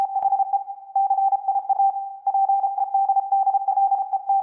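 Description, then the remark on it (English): Morse code beeps encoding a short clip of a text message thread: a single steady mid-high tone keyed on and off in quick, irregular dot-and-dash patterns, with a brief held stretch midway. No voices. “And so I thought it would be fun to pay tribute to both of my my text thread eights and convert a tiny clip of our text thread into Morse code.”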